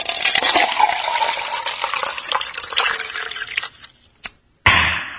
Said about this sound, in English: It would be a shame if I were to mix this fine rum with coke.